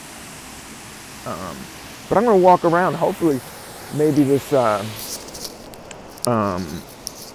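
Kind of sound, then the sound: nature, waterfall rushing nearby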